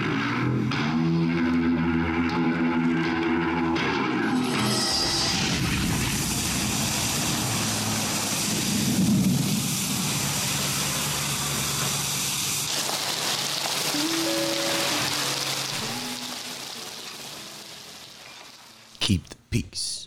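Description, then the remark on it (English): Steady rain hisses throughout, a dense, even wash of noise with low tonal rumbling early on, before it thins out and a few sharp knocks close the scene. “So it's like raining.”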